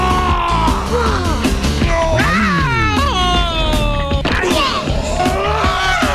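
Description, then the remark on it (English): Electronic Stretch Screamers toys let out loud, continuous screaming and yelling cries as they are stretched, with swooping, wavering pitch, layered over clattering thwacks and crashes, with no clear speech underneath. “Electronic stretch screamers. They scream when you stretch them and come back for more.”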